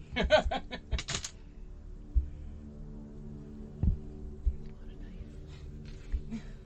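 A pencil eraser scrubs paper in a quick series of scratchy rubbing strokes during a pen-and-paper Dungeons & Dragons game, filling the first second, then gives way to a low background hum with a few faint thumps.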